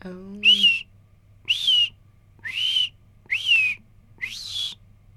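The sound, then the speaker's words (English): A person whistles an imitation of a white-throated sparrow's song: five clear, high whistled phrases, evenly spaced with short pauses, over a faint low hum. “Are going to be the white-throated sparrows with a again, not the best whistling, and then the red-eyed vireos.”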